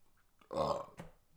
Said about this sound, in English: That was a good burp. I should have done it into the mic.